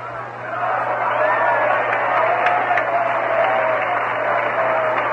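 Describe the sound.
A baseball stadium crowd at a Giants game roars and cheers steadily for several seconds after a foul ball goes back into the grandstand, a broad wash of many voices and some clapping, with a low electrical hum underneath.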